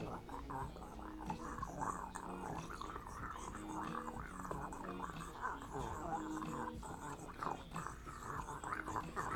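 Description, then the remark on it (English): A steady, low growling rumble that sounds like a person imitating a stomach rumbling with their voice. It continues unbroken, with wavering pitch, and no words are spoken. “I can hear your stomach rumbling from over here.”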